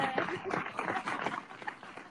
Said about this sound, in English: It's just a clap.